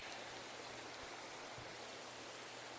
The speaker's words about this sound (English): Now do you hear it? Is that running water? More like falling.